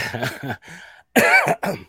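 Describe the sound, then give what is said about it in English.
A loud burst of throat clearing followed by several harsh coughs in quick succession, with a brief pause midway and a final cough at the end; no one speaks. “Pardon me, I've really started coughing.”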